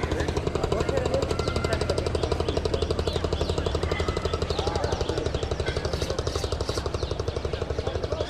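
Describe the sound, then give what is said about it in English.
The engine of a boat going by on the Ganges river runs steadily throughout, a loud, low, rapid chugging pulse with an even mechanical rhythm and a broad rattling hiss above it. “Just listening to that engine.”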